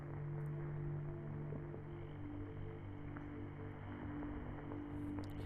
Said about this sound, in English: As you listen, you hear this strange humming or buzzing coming from above you. It sounds like it might be in the roof, or it doesn't sound like an insect or a bug. It just sounds like a strange hum buzz, like a, we would know it as like an AC hum